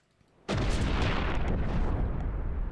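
A cannon blast erupts abruptly after a brief quiet moment, then a loud explosion roars on as a continuous heavy rumble with no one speaking; the cannon blows up the entire planet Earth.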